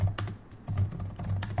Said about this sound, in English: Wait, you're typing it into the finished part. No, it's okay. I'm going to change it later.